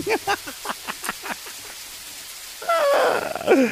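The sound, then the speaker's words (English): Rain-like patter from a garden spray nozzle hung over the top of a fence, water falling onto wild nasturtiums: a quick run of distinct drops tapping at an even pace, then a denser wash of spray with a voice-like tone rising over it near the end. “The rain was actually a really cool nozzle I picked up at the garden show in Seattle.”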